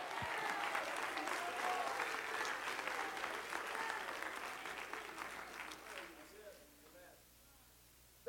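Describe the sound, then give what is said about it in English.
An audience claps their hands in a loud, dense, sustained burst of applause that gradually thins out and fades after about six seconds, leaving faint voices behind. “Oh, clap your hands all over the building.”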